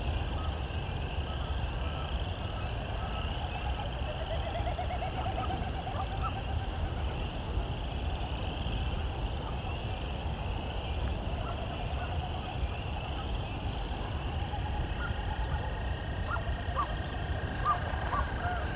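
Short, nasal, buzzy peent calls of an American woodcock repeat at intervals over a steady high insect-like drone and a low background rumble; nobody speaks.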